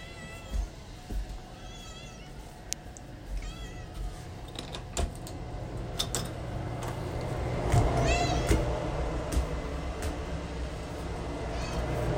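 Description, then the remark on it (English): A cat meows several times at uneven intervals, its cries rising and falling in pitch, moderately loud over a steady low background rumble, with no one speaking. “Quiet, Kitty.”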